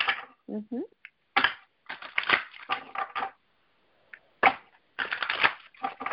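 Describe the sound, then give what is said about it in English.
Tarot cards being shuffled for a reading, crisp papery riffles and slaps coming in short bursts with brief pauses between, along with a faint snatch of voice early on. “So I am seeing, as I shuffle,”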